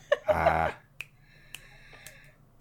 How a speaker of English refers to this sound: So while they're investigating in the attic, the people downstairs hear finger snaps. Right. So anyone versed in the snapping of fingers knows that when you hear the finger snaps, we all know there's going to be a rumble.